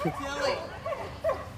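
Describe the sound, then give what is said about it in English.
Dogs barking outdoors in the country in a quick series of three or four sharp, yelping barks spaced about evenly, moderately loud, over a steady background murmur. “That's what those ain't no AKs out here, just a bunch of barking dogs.”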